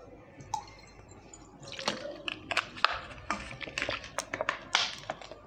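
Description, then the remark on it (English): Water poured into a glass as someone pours a drink for themselves, a series of irregular splashy glugs and bright clinks that build over a few seconds after a brief quiet start. “Let me pour myself.”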